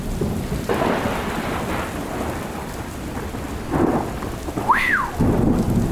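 Heavy rain pours steadily while deep thunder rumbles and swells underneath, with a brief rising-and-falling whistle-like tone cutting through near the end. No one speaks.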